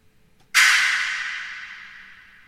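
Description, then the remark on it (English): A single sharp, bright hit, a dry sound processed with a reverb plugin and drenched in heavy reverb, its hissy echoing wash swelling at once and then fading slowly for about two seconds. No voices. “the reverb plugin, to really accentuate this dry sound to where it's going to sound very echoey”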